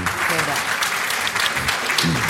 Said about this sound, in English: that feels good getting a bit of applause for that.